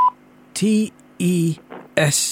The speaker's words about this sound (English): Thank you. Please spell your surname after the beep.